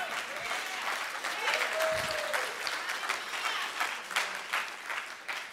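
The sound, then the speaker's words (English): A room full of people claps steadily, dense overlapping applause with a few whoops or voices rising through it, sustained at an even loudness before tapering slightly at the end. “We need more than a few people clapping for that.”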